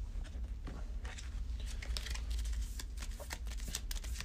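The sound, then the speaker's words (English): A deck of cards being shuffled during a card game, with a card shuffled back into it, a steady stream of quick papery flicks and snaps over about four seconds, with a low background rumble and no talking. “So Infinity of Darkness will get shuffled back.”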